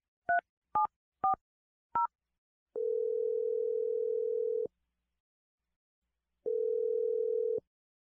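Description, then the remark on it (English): Four short two-tone keypad beeps as a phone number is dialed on a telephone, followed by two long steady ringback tones with a pause between them, clear with no voices. “I'm going to dial your boyfriend's phone number right now and let you make your awkward Tuesday phone call.”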